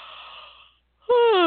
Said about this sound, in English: Yawning it out.